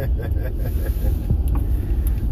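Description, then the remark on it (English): A steady, low rumble of an Amtrak train interior rolling along the rails, continuous and fairly loud, with faint muffled voices in the background. “Man, I feel not safe just being here where we are. Yeah. Like, Amtrak's not known for being reliable on rails.”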